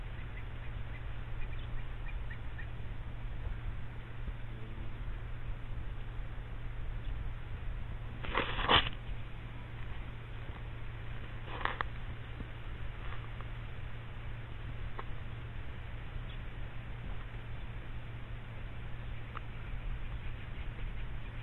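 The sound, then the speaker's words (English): A steady, rushing whoosh of countless small quelea wings as a stream of birds several kilometres long flows past, with two brief louder surges partway through and faint chirps mixed in; no one speaks. “Just whooshing past.”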